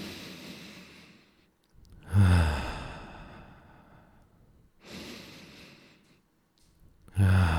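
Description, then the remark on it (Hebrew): Slow, deep breaths during a guided breathing exercise: a long drawn-in inhale filling the belly and then the chest, followed by a gradual sighing exhale, repeated in a steady cycle with short pauses between, no talking. “ואז נוציא נשימות עמוקות שממלאות את הבטן ואחר כך את החזה.”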